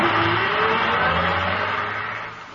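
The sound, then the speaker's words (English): A sightseeing bus engine revs and pulls away, its low harmonic drone rising in pitch before gradually fading as it moves off. No voices are heard. “And now, folks, the first movie star's home that you're going to see on this sightseeing bus is the home of Buster Crabbe.”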